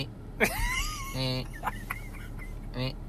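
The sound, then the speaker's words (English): A voice imitates a little penguin's call: a sharp yelp, a wavering whistled tone, then buzzy, honking bursts that return after a pause, all fairly loud over a low hum. “And you made a great little penguin sound before.”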